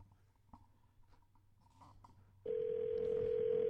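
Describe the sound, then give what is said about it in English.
A telephone rings over the line at the start of a prank phone call: after a couple of seconds of faint hum and small clicks, a loud, steady ringing tone starts and holds to the end. No one speaks. “All right, and what better way to wrap up this whole best of segment with, I think, the best phony phone call thing that I've ever played?”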